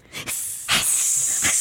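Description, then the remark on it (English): A voice imitates a snake's hiss for the story character Messta hissing, a sustained breathy high-pitched hissing with three brief louder bursts rising out of it, no words spoken. “Every time she hisses, I think that.”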